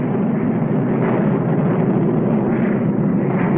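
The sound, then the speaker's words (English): A jet-powered X-plane test aircraft at Edwards Air Force Base in the California desert roars loudly and continuously, a dense, steady rumble that fills the whole stretch without easing off, with no voices present. “Edwards Air Force Base, where the United States Air Force tests its hottest aircraft, the jet-powered X-planes.”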